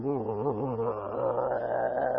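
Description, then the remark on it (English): A voice imitates a low, growling roar like a lion's, one sustained rumbling snarl that wavers at first and then holds steady for about two seconds, fairly loud, with no other sounds. “That was one of them, roaring like a lion. But it didn't sound like a lion. It sounded like a demon to me. It was real low.”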